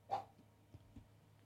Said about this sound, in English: Daisy's barking outside.